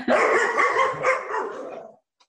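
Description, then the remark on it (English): A dog barks loudly in a rough, continuous run of about two seconds. The barks blur together before it stops abruptly. “Once again, your dog.”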